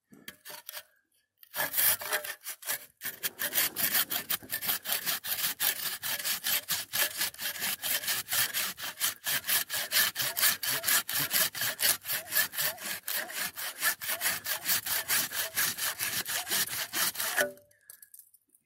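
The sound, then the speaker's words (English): Steady hand-sawing through a wooden limb while cutting down a tree, with water built up inside the limb; rapid rasping back-and-forth strokes that run for about fifteen seconds, loud and bright, with a brief pause near the start and no talking. “So I was cutting this tree down, or this limb, and like all of this water is like built up inside.”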